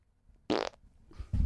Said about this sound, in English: You want to end this one with a funny fart? Yeah.